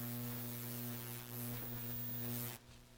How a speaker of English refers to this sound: Experiencing some feedback there, some static. Wonder if you're hearing that too.